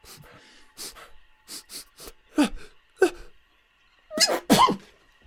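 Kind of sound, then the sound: human body sound, sneeze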